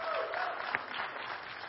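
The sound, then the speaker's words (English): An audience at New Covenant Church claps hands in praise of God in sustained, dense applause, with a few brief voices and cheers mixed into the steady clatter. “Can we give God a good hand clap of praise for all he's doing at New Covenant Church this morning?”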